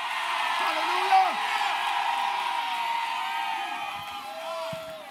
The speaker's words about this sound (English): If they just scream for no reason, it ain't for no reason. God done did it again. I need somebody to scream for seemingly no reason.